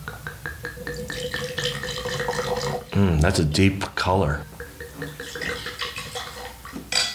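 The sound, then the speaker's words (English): A Bordeaux blend wine called Mockingbird, made from Cabernet, Merlot, Petit Verdot and Cabernet Franc, pours into a glass in a short splash-and-glug lasting about a second. Its pitch rises as the glass fills, with people talking around it. “Let me pour a little bit for you.”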